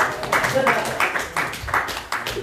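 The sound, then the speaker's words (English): A group claps in a steady, even rhythm for a couple of seconds for someone who has just recited a Bible passage, the sharp claps landing at a brisk, regular pace with a faint murmur of voices underneath. “Give him a clap.”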